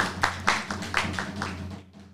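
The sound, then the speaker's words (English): An audience claps their hands together in a quick, steady rhythm, roughly seven or eight sharp beats, before the clapping stops and fades out. No one speaks. “Let's get a hand clap on that.”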